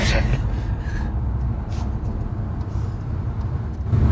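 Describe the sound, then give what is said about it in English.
Steady low rumble of a car in motion, heard from inside the cabin, with constant road and engine noise filling the whole stretch at an even, moderately loud level. “I mean, we're in the car and we're able to be a bit nippier.”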